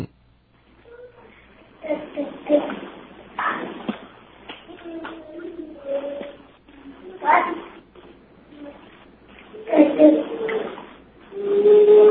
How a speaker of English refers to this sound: All right, well, here's one at 30 months of age. This is my daughter in the bathtub playing. You'll hear her splashing in the water.